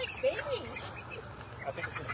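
A flock of very young chickens, gathered for a chicken run at the Bibles and Bulls Rodeo, clucks and peeps, several birds overlapping in a busy, continuous chatter with a few sharper chirps standing out.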